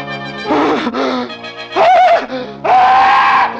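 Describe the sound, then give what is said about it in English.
A man screams in terror, three loud, strained cries in quick succession, the last rising and drawn out, with no talking around them. “The scream came at last, for Jafe Morner had seen the devil.”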